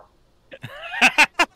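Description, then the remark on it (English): A female dog gives a brief rising whine, then four sharp, fairly loud barks in quick succession, with no talking over them. “First off, I'm going to kill my dog if she doesn't stop barking.”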